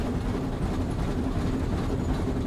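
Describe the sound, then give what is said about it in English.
A steady, continuous rumble of a train rolling along the rails, with a dense low-end roar and faint rhythmic clatter, moderately loud, with no voices. “So, I know we're on a train going somewhere.”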